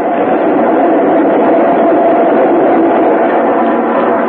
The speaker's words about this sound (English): Train coming. Oh. It's an express, Pete. It ain't stopping.